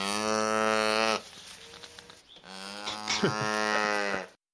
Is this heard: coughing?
no